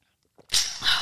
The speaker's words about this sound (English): I'm sorry, guys. I'm just coughing so much. Let me get some water real quick.